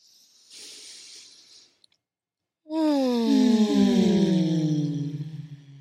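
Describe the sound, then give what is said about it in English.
A deep, airy breath drawn in for about a second, followed by a short pause and then a long, voiced moaning exhale that slides downward in pitch, during a guided exercise of deep breaths and moans. “And just take a deep inhale.”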